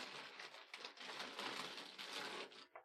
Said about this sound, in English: I'm just going to do a bit of rustling, so just either cover me or edit me out, Courtney, while I just open the bag and rustle